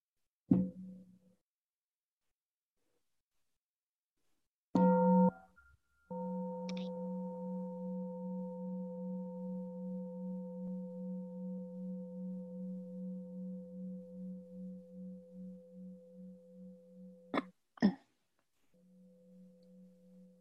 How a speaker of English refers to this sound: We have a sound of the bell.